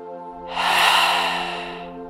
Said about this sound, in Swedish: Och du kan börja med att dra 3 djupa andetag. 3 djupa andetag där du andas in genom näsan och med en ljudlig suck så andas du ut alla spänningar genom munnen.